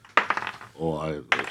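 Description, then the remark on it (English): Dice clatter and tumble across a table in a quick rattling burst, with a short voiced sound in between and then another brief clatter at the end; the roll shows a 9. “That's a 22. Well, she seems to... With a 9 on the dice.”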